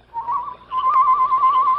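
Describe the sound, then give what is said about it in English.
A person gives a bird-like signal whistle in reply to Tonto's signal, at an earthen dam holding back a lake: a short clear note, a brief break, then a longer steady note held at the same high pitch. The whistling is fairly loud, with no talking. “You made that noise like a bird. A reply to Tonto's signal.”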